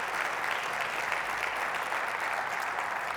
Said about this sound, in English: And you clap too quick, but would our veterans stand? All the veterans, awesome. Give them a hand.